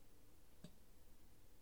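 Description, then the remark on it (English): A single soft clock tick clicks once against a quiet, hushed background, with no other sounds and no voices around it. “It's a clock.”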